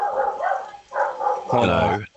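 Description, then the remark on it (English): Dogs bark in a quick series of sharp, yappy bursts, the last one louder and longer, filling the short moment with excited barking. “Hold on, I got dogs barking like crazy.”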